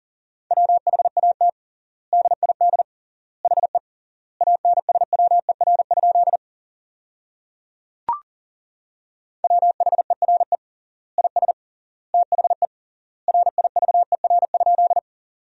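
Morse code at 40 wpm with triple word spacing, sending practice sentences built from the top 300 words: a single steady mid-pitched tone keyed in fast dots and dashes, grouped into words with clear pauses between, plus one brief pop partway through. No voices.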